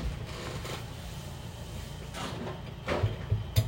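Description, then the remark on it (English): Several sharp knocks on a door land near the end, uneven in rhythm, with a couple of fainter taps earlier, all over a steady low rumbling background and no voices. “Someone's knocking on Jock's door and he's going to open it.”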